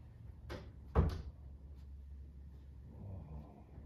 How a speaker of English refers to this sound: close the door so I know you're in there.